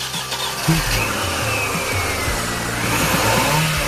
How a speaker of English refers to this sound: He's just gone in his car.